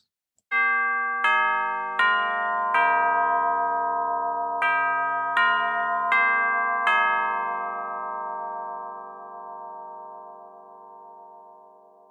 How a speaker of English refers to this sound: If you guessed a time melody clock, you're right.